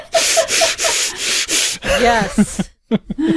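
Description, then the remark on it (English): Someone breathes hard through clenched teeth, making about five quick, rhythmic, loud hissing strokes. Laughter and voices follow afterward. “Do you guys remember doing this breathing through your teeth thing?”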